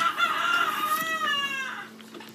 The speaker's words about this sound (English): You guys, the crows will not stop. The crows, the rooster.